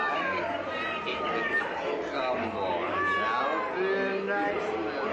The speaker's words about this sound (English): We turn to the right, and then we see old Bill sitting there with a couple of cats up here on our right-hand side.